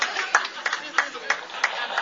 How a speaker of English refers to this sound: We get you the applause there, okay?